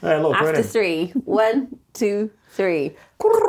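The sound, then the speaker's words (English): Several voices collectively imitate a turtle dove, trying to catch one, producing a series of about six short, purring coos with gently wavering pitch, separated by brief pauses. “Can we mimic the sound of a turtle dove?”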